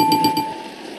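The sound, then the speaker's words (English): A game show's correct-answer buzzer sound effect, played when a contestant gets a question right: three quick, bright electronic chimes in rapid succession, followed by a short fading ring, with no voices. “Okay, so if you get the question right, my contestants, you will hear this sound.”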